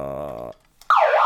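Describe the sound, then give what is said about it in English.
A sustained harmonic tone cuts off, and after a short pause a loud siren sound effect, called the happiness siren, bursts in, its wailing pitch sweeping up and down. “And that's the happiness siren.”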